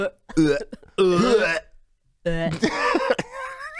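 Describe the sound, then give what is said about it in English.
A harsh, aggressive cough, coming in two loud, strained bursts of throaty hacking and rasping vocal noise separated by a short pause. “Yo, you get a real aggressive cough.”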